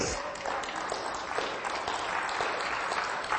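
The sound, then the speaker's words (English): A crowd applauds steadily, a dense, even wash of many hands clapping at once that holds at a constant level from start to finish with no individual claps standing out. “It's a good time to clap.”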